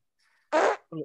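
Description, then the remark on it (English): A short, loud, raspy fart lasting about a quarter second, followed moments later by a brief burst of a voice. “That's a really good fart sound effect, whoever did that.”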